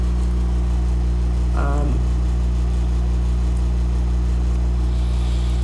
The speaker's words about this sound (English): I'm sure I probably said that in another previous episode, but I don't know ain't shit I can do about it, and it's too hot to turn this fucking air conditioning off, so it is what it is for the time being.